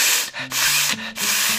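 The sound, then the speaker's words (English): Three loud, harsh, breathy sniffs blown straight into a microphone, each a rough airy rush separated by short pauses, with a faint low hum underneath and no talking. “Okay, you didn't see her face, but man, she was sniffing the crap out of that microphone.”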